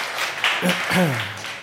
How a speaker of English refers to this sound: First, let me say this. We have a lot of guests here today. Can we show our guests some love, give them a round of applause, and welcome them? Let them know we are glad they are here today.